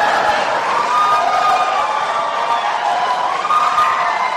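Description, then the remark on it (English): A large audience at a debate between Donald Trump and Hillary Clinton bursts into sustained applause and cheering after a remark by Donald Trump, a dense, loud wash of clapping and voices that holds steady throughout without any single speaker. “We want to remind the audience to please not talk out loud. Please do not applaud.”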